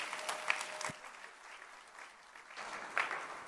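An audience claps together in a steady wash of applause that dips briefly around the middle and swells again, with a few sharper claps standing out and no one speaking.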